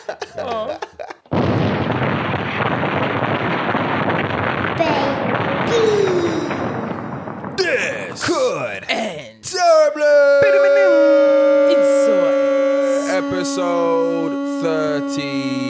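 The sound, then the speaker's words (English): A long, loud hissing rush gives way to a single voice imitating a siren: a sliding, then steady sustained wail held for several seconds before breaking off. “It's the longest siren we've had”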